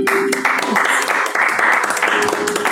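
A loud, steady burst of applause from a crowd after a speech, many hands clapping in a dense crackle for a few seconds, with faint voices or a held tone underneath.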